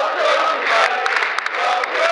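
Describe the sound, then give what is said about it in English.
A large Leyton Orient football crowd cheers and chants continuously for manager Slade, a loud, dense roar of many voices with rhythmic swells, filling the whole stretch without letting up. “So you can tell from that, the crowd were just well behind Slade, you know, very proud to have him as manager and really got behind him.”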